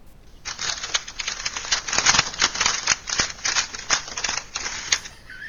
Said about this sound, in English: Somebody, can you make, like, some paper shuffling noises for a second?